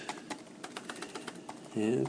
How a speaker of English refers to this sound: I just make some typing noises to create the illusion that I've not done my research and I'm desperately doing it now.